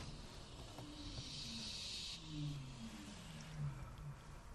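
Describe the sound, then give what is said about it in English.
A car engine idles with a low, wavering hum that rises and dips slightly, while a steady breathy hiss sits over it, as people in the car watch barn owls; no one speaks. “Can we turn off the car engine then and maybe we'll...”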